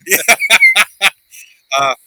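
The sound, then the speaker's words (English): A rubber duck squeaks five times in quick succession, loud, then gives a faint short squeak and one longer, drawn-out squeal after a brief pause. “Yeah, playing with my rubber duck.”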